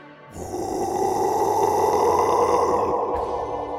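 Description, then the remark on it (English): A low, rough growl coming from the basement of a mansion starts abruptly and rumbles on steadily for a few seconds, grainy and guttural with a throaty texture, fairly loud and sustained with no speech. “It was a low growling noise that sent chills down their spines.”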